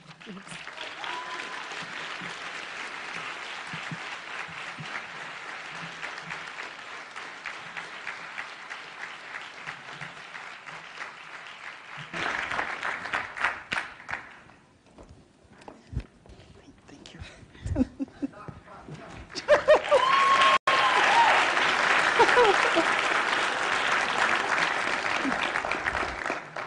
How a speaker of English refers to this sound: That warm applause means so much to me